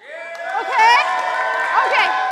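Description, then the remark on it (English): A crowd in a church basement cheers in a sustained, steady roar of many voices, with high shouts and whoops swelling near the start and again toward the end. “Okay, I think the last thing I need is maybe a cheer.”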